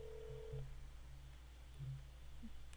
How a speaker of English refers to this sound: Ladies and gentlemen, he's dialing his phone right now. It's Buzz. I'm calling Buzz. You're calling Buzz Aldrin.